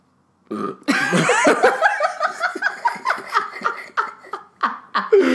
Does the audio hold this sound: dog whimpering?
no